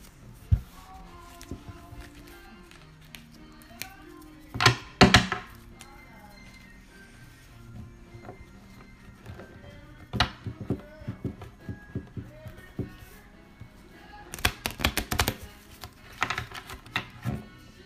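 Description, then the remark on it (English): Playing cards are bent as they are shuffled twice, each a quick rapid riffle of crisp fluttering clicks, with soft scattered taps and handling noises in between. “They're starting to shuffle a little better. I'm bending them.”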